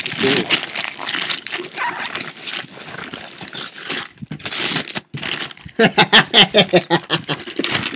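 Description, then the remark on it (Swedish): Wrapping paper being torn off a birthday present, a board game, with continuous crinkling and crackling, then a run of sharper, rhythmic rips toward the end. “Sen kommer då födelsedagspresent. Jag har ju fyllt 27. Ja, alltså. Ja. Jag tänker att jag använder den till att täcka för vinden. Ja. Nu ska vi se här då. Och igen, jag fastnar med papper.”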